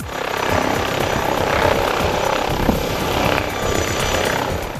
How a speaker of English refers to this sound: As we arrived to set up on the second day, the Essex Air Ambulance was out on a mission, and we shortly got to see the air ambulance land very close to us.